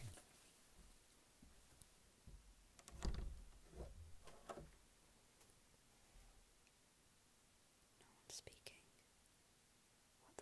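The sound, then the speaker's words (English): A door is quietly opened, with a few soft clicks and rattles around the middle and another short burst near the end, against a hushed background with faint whispering. “because I just opened the door and no one's speaking.”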